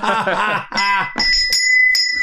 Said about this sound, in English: All right, ring the bell, you fucking asshole.